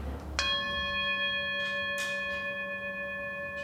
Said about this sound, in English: now when she rings the bell, we could be like yelling and stuff and fighting, but we still know when that bell rings that we stop